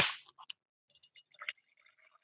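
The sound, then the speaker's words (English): A sharp crack and hiss as a beer is opened, then a quiet pour with fizzy crackling and small liquid splashes and drips, with no voices. “Well, yeah, you're pouring it, dude. Good job. Yeah. You captured that sound great.”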